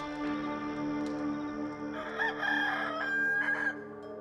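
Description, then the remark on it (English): A rooster crows once at dawn, loud, its strained call rising and wavering over a steady humming drone that fills the background. “Our rooster friend says that another day has dawned.”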